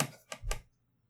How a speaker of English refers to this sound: You typing this in?